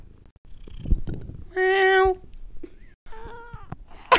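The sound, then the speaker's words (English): A cat's big yawn comes out as a loud, squeaky, drawn-out vocal tone, followed by a softer, falling second sound, with faint low purring and rustling around it. “There's a big yawn.”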